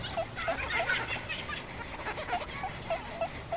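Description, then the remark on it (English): The imps mopping a minimalist Swedish-style IKEA floor: steady soft scuffing and rubbing with a series of short, high squeaks at irregular intervals, about eight in all, fairly quiet with no talking. “Listen to the imps mop the floor for a little bit.”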